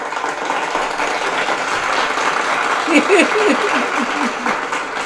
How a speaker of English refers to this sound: a round of applause, y'all. Y'all know he's everything.